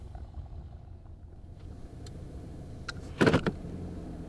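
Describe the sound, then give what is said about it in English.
A car's low engine rumble rolls steadily, then a short, louder crunching burst near the end as it comes to a stop, parking on the lawn of a small Baptist church on a dirt road in Franklin, Texas. No one speaks. “I park my car on the lawn because there is no parking lot.”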